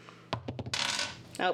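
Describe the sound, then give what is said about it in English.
Kraken dice clatter onto a hard table: a few quick, sharp clicks followed by a short, rolling rattle, fairly loud, with a brief voice sound right at the end. “Oh, I've got some Kraken dice.”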